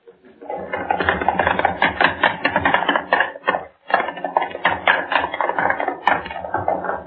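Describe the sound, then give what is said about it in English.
Three people make running footsteps as a studio sound effect, a dense, rapid clatter of stomping across the studio floor and up stair steps and back down, loud and steady, with a brief break midway before the pounding resumes. “I want running footsteps, all three of you. Across the studio floor, up the stair steps. You stomp and run back down.”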